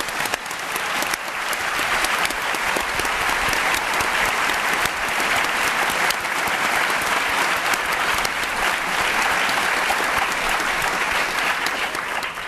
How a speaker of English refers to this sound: Well, I can hear from all your claps, there's such enthusiasm in the audience.